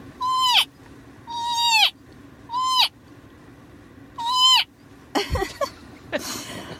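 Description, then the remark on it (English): A voice imitates a cow elk call: four nasal, squealing mews in a steady rhythm, fairly loud, followed by a burst of laughter. “And I make an elk noise, which this is a cow elk.”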